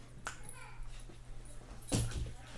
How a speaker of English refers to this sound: Tell your dog to shut up